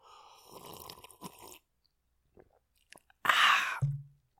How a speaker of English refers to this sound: Here is what small sip of whiskey sounds like.